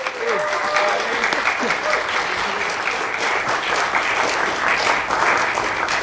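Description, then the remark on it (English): Steady, dense audience applause welcoming an introduced guest fills the whole six seconds, loud and even, with a few faint voices and whoops rising briefly through the clapping. “Please give him a big hearty round of applause.”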